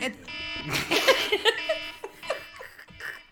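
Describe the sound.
A steady, buzzing alarm tone drones throughout, with people laughing and talking loudly over it.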